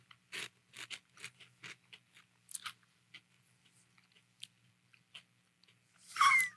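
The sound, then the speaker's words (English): Crisp crunching of a raw vegetable snack being chewed, popped in whole with the stem side included, a quick series of sharp bites fading into softer chews, then a louder rustly burst at the end. No talking. “Listen to the crunch on this.”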